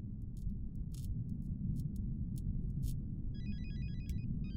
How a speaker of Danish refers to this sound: Røgdykkerne hørte lyden af ringende telefoner og åbnede døren til den intimistiske garderobe i det store pulterkammer.